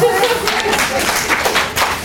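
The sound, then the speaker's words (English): An audience claps steadily for about two seconds, a dense, loud wash of many hands with a crackly, hissy texture and no clear individual beats. “Big round of applause for Stacy.”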